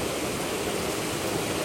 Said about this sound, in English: Listen to the Oak Creek as it rushes across the rocks.